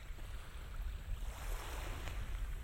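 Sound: water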